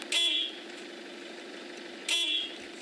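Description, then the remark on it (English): Two short, bright car horn beeps about two seconds apart, each a steady high tone lasting under half a second, over a low continuous hum. “So that's the mating call of a male Ford Rover trying to attract the female in order to reproduce.”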